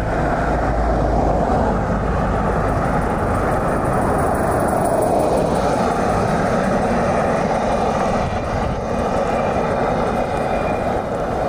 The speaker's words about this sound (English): So this is me walking down my drive, and a car driving past the road into my drive. That's another car. Oh, here comes another one.